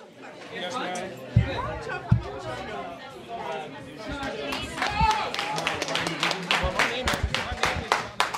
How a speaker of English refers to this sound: Give yourselves a round of applause, please, on your way out.